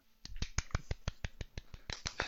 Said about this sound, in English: Sportsmanlike applause. Sportsmanlike applause.